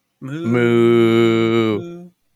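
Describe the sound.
A person imitates a cow with one long, drawn-out moo, loud, held steady for over a second before trailing off; a brief voice sound starts right at the end.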